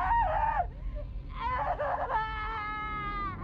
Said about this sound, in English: I don't mean screaming like arguing, I mean guttural screeching, deep throat level, agonizing screaming. The kind of screaming that comes from someone bending your arm the wrong way until your shoulder joint snaps out of its socket.